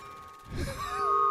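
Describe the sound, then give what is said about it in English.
Wind chimes ringing with a few sustained, overlapping metallic tones that shimmer and linger, over a brief low rumble, heard alone at moderate volume. “Okay, those must be the wind chimes.”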